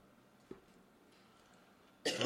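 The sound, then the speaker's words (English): A brief, faint throat-clearing catch is followed after a quiet pause by a loud, harsh cough, cut off at the end. No one speaks. “excuse me, this cough is killing me.”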